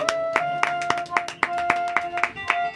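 A show's audience gives a guest a round of applause, sharp, distinct claps in a quick, fairly steady rhythm, about four per second, with a faint sustained tone humming beneath them and no talking.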